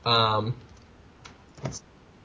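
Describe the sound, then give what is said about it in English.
A brief vocal sound opens, followed by a couple of soft, separate keystroke clicks on a computer keyboard as someone types a title, spaced apart and fairly quiet against a low background. “Apologize for the typing.”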